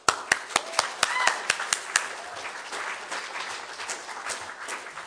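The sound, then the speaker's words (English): An audience claps in a quick, steady rhythm of crisp hand claps for about two seconds, then the beats dissolve into softer, scattered applause with faint voices mixed in. “Don't clap for me, I'm just a man, but praise the Lord.”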